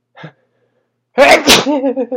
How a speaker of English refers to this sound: Holy cow, am I going to sneeze? Here we go, guys.